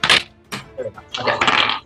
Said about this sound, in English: Sorry, just rolling some dice real fast. Oh. Why do I roll good now? Sorry, I'm having some issues with my dice. They're dumb.